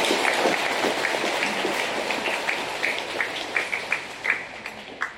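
A church audience applauds to congratulate a married couple on their 20th wedding anniversary, in a steady, dense wash of clapping that runs the whole time, with a few sharper individual claps standing out toward the end as it begins to thin.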